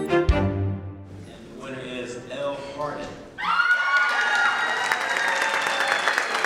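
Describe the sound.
Excited voices rise at first, then a loud, sustained burst of crowd cheering and joyful screaming with scattered clapping fills the rest, as a woman learns she is one step closer to a new home through a city homeownership program.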